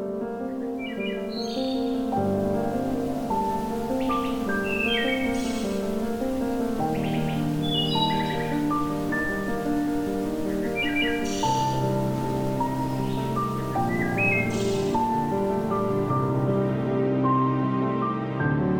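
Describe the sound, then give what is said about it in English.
Wood thrush song in a Carolinian forest in Canada: clear, flute-like rising phrases repeat every few seconds, ringing over a steady, layered low tonal backdrop that continues throughout. “Songs of species such as this wood thrush can be heard echoing through this natural auditorium throughout spring and summer, far away from the cities and busy highways.”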